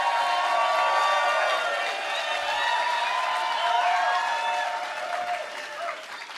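A live show audience applauds and cheers a performer, dense clapping mixed with whoops and high shouting voices, holding loud for several seconds before tapering off slightly at the end.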